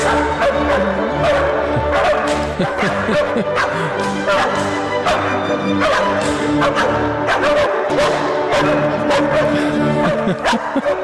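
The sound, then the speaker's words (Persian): Three dogs bark, yip and whimper in repeated bursts over sustained orchestral music as a Mozart piece is performed with them at a classical music concert, loud throughout, the howls and whines blending into the instruments. “ببین من به همه سگ‌ها از جمله این سه عزیز علاقه‌مندم، ولی آخه الان لیو سگ منم بود همین این صداها رو به خدا در می آورد.”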